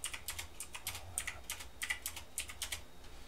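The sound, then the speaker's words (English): Rapid typing of a message on a keyboard, a quick irregular run of crisp clicking keystrokes lasting a few seconds, moderately loud with a low background hum and no talking. “Yeah, let me just message you real quick.”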